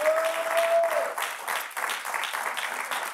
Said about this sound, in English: So can we give God a round of applause one more time?